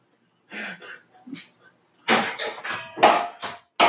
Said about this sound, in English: My cat's knocking shit off my counter.